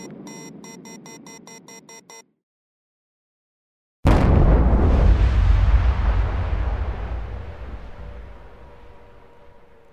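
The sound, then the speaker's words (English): After a short run of tonal beeps and a pause, a deep, loud rumble bursts in abruptly, a booming low roar that slowly fades over several seconds, with no voices. It is a recording of infrasound, amplified greatly so it becomes audible. “Here's an example of infrasound, turned way, way up so you can actually hear it.”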